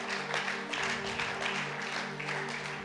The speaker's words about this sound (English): Can we give a quick round of applause to everybody who carries a ministry? Можем мы поаплодировать всем, кто несет служение?